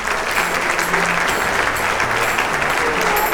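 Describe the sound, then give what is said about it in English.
Sustained applause from a crowd, dense steady clapping at full volume throughout with no pauses, like many people cheering. “Round of applause for y'all.”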